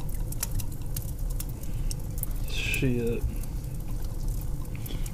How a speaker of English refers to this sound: Let me pour some more whiskey in my new cup of coffee that I just got.